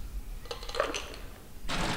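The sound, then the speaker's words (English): A few bright, quick clinks of ice cubes dropping into a glass, followed by a soft, rattling rush as more ice tumbles in. The sounds are fairly quiet and no one speaks. “And then I'll be adding some ice to the glass.”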